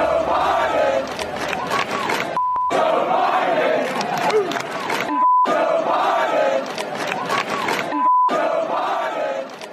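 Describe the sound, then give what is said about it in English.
A large crowd chants the slogan "Let's go, Brandon" in unison, loud, repeating the same rhythmic phrase about every three seconds, with a short electronic beep in each gap between repetitions. “As you can hear the chants from the crowd,”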